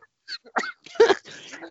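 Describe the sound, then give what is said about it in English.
A quick, uneven run of harsh coughs that are not from COVID, four or five short bursts with a hoarse, throaty edge, moderately loud and without any talking. “Right, guys, we don't have COVID, we're just coughing because we're very too much.”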